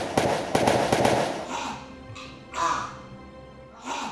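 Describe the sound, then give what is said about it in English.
Gunshots fired by a police officer to shoot a man down: a rapid volley of loud, sharp gunshots cracks out in quick succession for over a second, then trails off into a ringing decay, followed by two softer, hissing bursts. “You shot him.”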